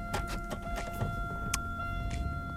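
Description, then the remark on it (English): A car coming down the road, heard as a steady low engine rumble with a few faint clicks and ticks on top, fairly quiet and continuous, with no one talking. “oh look, I think there's somebody coming down the road. That means I'm gonna have to move my car at least to the right side.”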